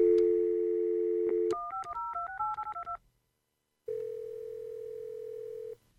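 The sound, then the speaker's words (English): A steady telephone dial tone gives way to a quick run of about ten touch-tone dialing beeps. After a short silence, another steady phone tone hums for almost two seconds. No one speaks. “Okay, where's my phone?”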